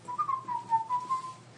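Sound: person whistling a tune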